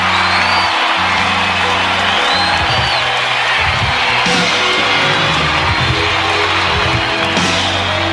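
A loud, sustained roar of audience applause and cheering fills the whole clip as a singer makes his first appearance on a live stage in a long time, dense and steady, with occasional high whoops and yells rising above the clapping.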